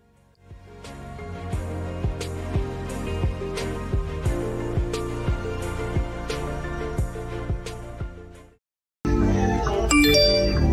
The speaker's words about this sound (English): It's my phone.